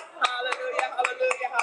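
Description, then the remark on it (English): An audience claps for God in a steady rhythm, about six sharp claps spaced evenly, with sustained voices singing or calling out underneath. “Give God a hand clap.”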